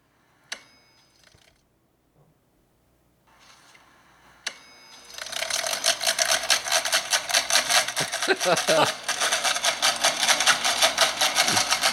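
A window-unit air conditioner, waterlogged after a rainstorm made it suck in moisture, starts after a couple of sharp clicks, then sputters and rattles loudly and steadily, a rapid mechanical chugging like a World War I biplane struggling to get aloft.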